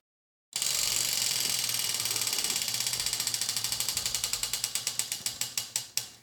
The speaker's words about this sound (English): All right, let's spin the wheel.